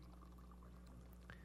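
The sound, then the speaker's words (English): Hot water, brewed in the morning, pours steadily into a cup, a soft continuous splashing trickle, with a brief rising gurgle near the end as the cup fills. No voices. “Now, earlier this morning, before it even started to rain, I brewed a bunch of hot water. Don't you love a good cup of hot water in the morning?”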